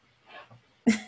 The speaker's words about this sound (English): That's not the most delicate sneeze. That was a very polite sneeze. Thank you. No, Gesundheit.